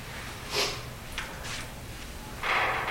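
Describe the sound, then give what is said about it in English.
A metal ladder rattles about five times in short, irregular bursts, the last one longer and a bit louder, heard faintly on an audio recorder with no one talking. “The ladder. Just rattled like 5 times.”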